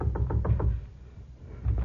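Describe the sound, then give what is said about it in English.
A guide knocks on a wooden door on a building's top floor: a quick run of four or five firm knocks, evenly spaced, followed by a pause and one more faint thud. “My guide knocked on the door.”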